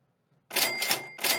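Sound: cash register sound effect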